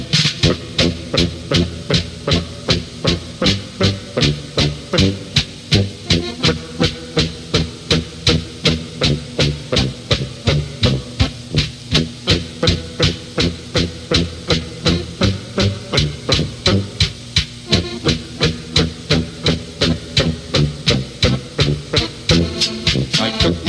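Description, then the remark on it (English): A John Deere Model A tractor engine chugs hard under load, pulling a two-bottom plow with 16-inch lays through clay: a loud, steady putt-putt beat that keeps an even rhythm for the whole stretch with no voices. “got a John Deere tractor, it's a Model A. I use it for my plowing and also baling hay.”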